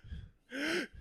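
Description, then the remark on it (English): A single sharp, strained gasp for air, a raspy inhaled breath with a rising pitch, lasting under half a second, fairly loud. A person's voice imitates the gasp of someone who has been stabbed. “You don't make noise. You know, he goes, you gasp for air.”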